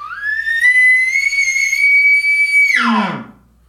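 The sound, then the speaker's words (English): An elk bugle imitated on a game call: one loud note climbs into a long, steady, high whistling tone, then drops abruptly into low, raspy grunting before fading out. No talking. “And then you can kind of play with the length, duration, and intensity of that bugle.”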